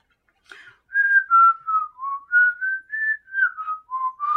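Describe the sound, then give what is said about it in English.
A person whistles a bird-like tune on its own, imitating birds chirping in the morning: a quick run of about nine short, clear notes that dip and rise in pitch, with a small click just before it starts. “And there's, like, birds. Chirp, chirp, chirp, chirp, chirp, chirp, chirp, chirp.”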